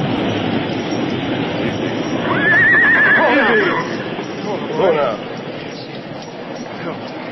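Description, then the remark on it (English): A horse, Silver, lets out a single loud, quavering whinny that rises and trails off over a few seconds, as the horses stand in floodwater about a foot deep, set against a dense, steady wash of rushing background noise. “Our horses are standing in water about a foot deep.”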